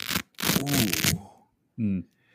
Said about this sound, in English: That sound right there, baby. That's that that fresh, brand new Red Rooster glove about to go on the back of your hand.